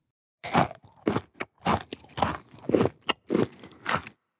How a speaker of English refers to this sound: Chewing is when we use our mouths to break up the food we eat before we swallow.